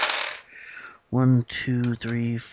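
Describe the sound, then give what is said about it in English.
A short, bright rattle of 14 dice tumbling across a hard table, rolled in a tabletop game to reduce damage, followed by a few seconds of voiced sounds from someone. “So guy gets 4, 10, 14 dice to reduce 11 damage.”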